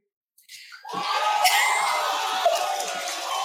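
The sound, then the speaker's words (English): After a brief moment of silence, a canned crowd erupts into loud applause and cheering, with whoops and shouts rising quickly and holding steady at full volume to the end. “Let's give her a round of applause. No, don't do it. Don't press that button.”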